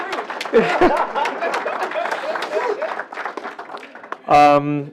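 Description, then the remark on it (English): An audience at a panel discussion breaks into steady, crackling applause for a panelist, many hands clapping at once with some crowd murmur, before a single voice rises briefly near the end. “You can clap for”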